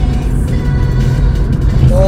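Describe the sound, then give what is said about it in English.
A heavy truck rumbles past, its deep engine drone loud and steady for about two seconds, with a slight rise in pitch near the end. “Yeah, and there's a truck.”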